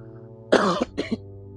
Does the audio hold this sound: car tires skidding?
no